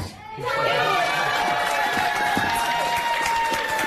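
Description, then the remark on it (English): Dozens of kindergarten classmates cheer and shout together for a 5-year-old boy at his adoption hearing in a Kent County court, Grand Rapids, Michigan, waving paper hearts on wooden sticks; a dense, lively burst of high voices that swells in quickly and stays loud and steady throughout. “Dozens of classmates cheering him on, waving paper hearts on wooden sticks.”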